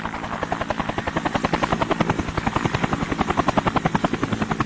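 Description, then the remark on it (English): A helicopter's rotor chops steadily and loudly overhead, a fast rhythmic whump-whump with a broad engine roar beneath it, pulsing in regular beats without any voices. “Now, that sounds a bit like one of those Vietnam-era helicopters.”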